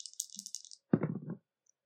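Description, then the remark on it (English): Dice rattle briefly in a cup with bright clicking, then tumble out with a sharp clatter and a short burst of rolling knocks before stopping, the roll coming up a five. No one speaks. “Time I ask you to roll the dice at the moment, I feel like I'm staking the entire future.”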